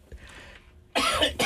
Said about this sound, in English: You just see? Now you've been coughing. It's a dry cough.